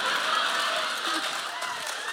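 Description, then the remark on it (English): A steady wash of audience clapping, dense and even across the whole stretch, with a faint voice briefly audible beneath it. “We need to stop clapping because...”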